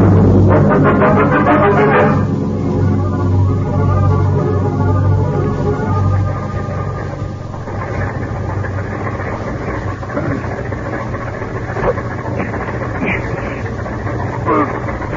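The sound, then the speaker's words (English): A car engine idles in a closed garage, a steady low rumble with a throbbing hum that runs the whole time, loudest in the first couple of seconds before settling evenly. “You just lock him in this closed garage to breathe the gas. Tonight, when it's dark, we get rid of their bodies and their car. Start the motor.”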